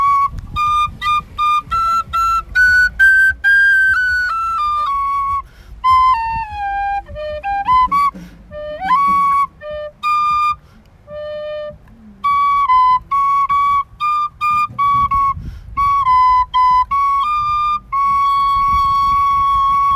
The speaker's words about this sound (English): Pauly Shores on the penny whistle.